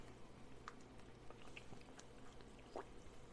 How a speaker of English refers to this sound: I'm playing with Photoshop expressions, and I'm also making sure that I'm drinking water.